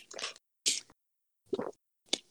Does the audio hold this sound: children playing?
no